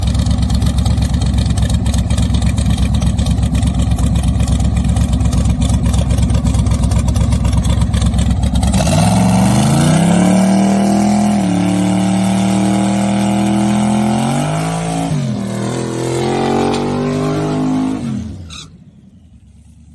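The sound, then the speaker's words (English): A car engine rumbles at a steady idle, then revs hard on a puddle of poured traction compound, its pitch climbing in loud surges before cutting off near the end; no one speaks. “So that's one of the co-owner's cars, and that was the other co-owner that was pouring the puddle.”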